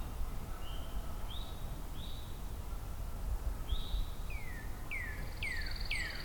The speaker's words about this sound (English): Still in the background, Northern Cardinal. Pine warbler, eastern towhee.